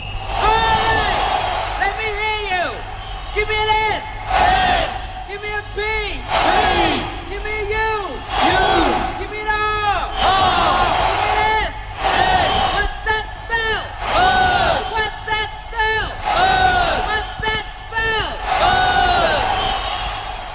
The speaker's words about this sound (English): That is, of course, a good old soccer cheer that we have found this afternoon.